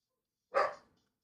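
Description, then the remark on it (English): A single sharp dog bark rings out, loud and brief with a quick decay, surrounded by silence. “I'll kill that dog. That is the in all caps dog.”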